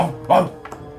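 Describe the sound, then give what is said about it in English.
A person imitates a dog barking with one short, loud, throaty woof, followed by a couple of softer vocal sounds trailing off. “Yeah, retreat, Cook runs like around the block and then like barks down the block.”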